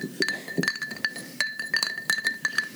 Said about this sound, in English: People are listening in stereo to us stirring our drinks there.